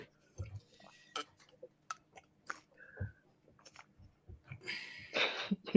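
Quiet mouth clicks and small glass taps, then a brief, breathy slurp as someone takes a sip of a drink near the end. No one speaks.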